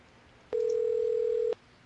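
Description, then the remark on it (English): A steady telephone tone sounds for about one second during a call to a Red Roof hotel's dial-by-name phone directory, loud and clear over a quiet line, then cuts off abruptly. No voices are heard. “Now, Red Roof, you can't just dial with a room number. Now you gotta have the name.”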